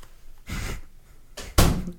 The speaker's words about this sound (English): Hey, can you close the door?